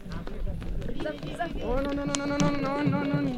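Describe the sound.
Hooves of two donkeys clop unevenly on hard ground, sharp knocks passing by on the left as they carry kids, giant water canisters and a Palestinian flag, soon joined by loud sustained voices of a crowd of about 150 to 200 people setting off on foot for a spring.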